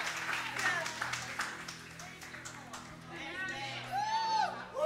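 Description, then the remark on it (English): A crowd claps steadily while voices murmur, then bright, rising whoops and cheers swell over the clapping, growing loudest at the very end, as they cheer a woman on. “Come on, we're cheering her on.”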